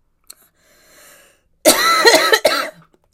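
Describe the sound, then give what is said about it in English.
A soft click and a faint breathy stretch give way to a loud, harsh fit of rapid, strained coughing with wet, raspy bursts from someone who has choked on water. “Choked on water.”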